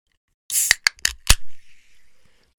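A can of Wegmans brand black cherry vanilla sparkling water cracks open with a few sharp metallic clicks and a pop, followed by a soft, steady fizzing hiss that fades away. Fairly loud, with no talking.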